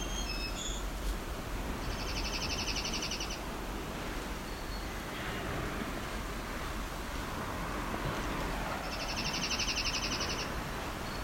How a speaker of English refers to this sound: This bird can't be much further either.